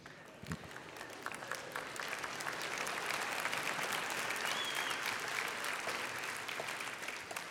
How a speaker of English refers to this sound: The hand clap should have been a lot better.